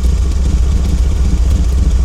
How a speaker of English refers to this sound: You sit on it and turn the ignition. And you hear it thrum to life, the engine purring, filling you with a sense of memory and satisfaction.